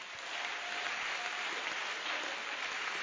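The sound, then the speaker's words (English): A crowd applauds steadily, a dense, even wash of many hands clapping at once that holds at a constant loudness throughout, with no voices rising above it, giving the Lord a clap of praise during a sermon. “Give the Lord a wonderful clap of praise.”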